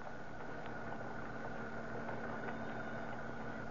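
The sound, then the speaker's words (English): A roadster's engine idles steadily at the city dump on the eastern edge of Huntington Beach, in fog, a low continuous rumble with a faint mechanical hum and no voices or other sounds breaking through. “Kill your motor and we'll get busy.”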